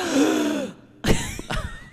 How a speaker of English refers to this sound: Audible gasps.